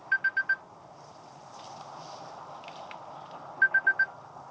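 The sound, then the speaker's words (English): A mobile phone rings with an incoming call from an aunt calling back: a quick burst of four bright electronic beeps, a pause filled with low background noise, then the same four-beep pattern again. “That's my aunt calling me back.”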